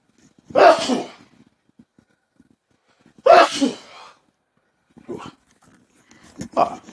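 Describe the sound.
Two loud sneezes a few seconds apart, slightly off-mic in a dusty studio, each a sharp burst with a breathy tail, followed by brief murmured speech.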